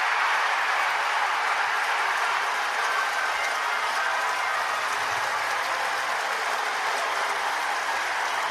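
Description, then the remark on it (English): A baseball stadium crowd roars and cheers after an Adam Jones home run gives the Orioles a 7-6 lead, a dense, steady wash of voices and noise holding at full volume throughout, with no clear talk above it. “So again, the crowd's getting crazier and crazier.”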